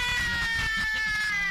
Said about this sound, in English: Oh, I scared the cat.